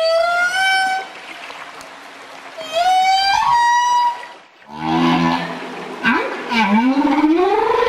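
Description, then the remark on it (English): Long, eerie whale song with rising and falling tonal moans and harmonic wails, followed by deeper groaning pulses and a sweeping upward cry, loud with no talking. “They also found whale song is at a similar frequency as boat motors, and it's getting a bit noisy below the surface in many places, making it harder for whales to communicate, and that means harder for them to mate.”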